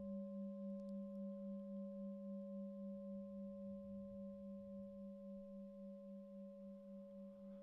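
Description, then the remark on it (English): A single bell rings on in a long, steady hum of layered low and mid tones, slowly fading over several seconds with no voices. “While you're noticing the sound of the bell moving through time, you're in the present moment.”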